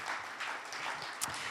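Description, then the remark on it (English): A crowd applauds God for his grace in their lives, a dense, steady wash of many hands clapping with no break, one sharper clap standing out near the end. “Let's actually applaud God for his grace in our lives.”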